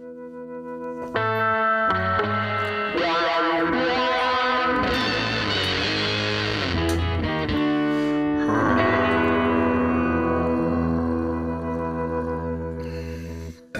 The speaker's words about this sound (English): What was that, like Mongolian throat singing or something? Yeah. Version of it? It's the hum. You got to do the hum. Yeah, but that was more of a growl, I'd argue. I'm familiar with the hum. That was not a hum. That was a growl.